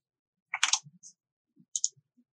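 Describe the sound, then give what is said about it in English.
A handful of twelve dice rattles and clatters in a quick burst, followed by a few sharp clicks as they settle, with no one speaking; the roll gives two successes. “2 successes, 12 dice.”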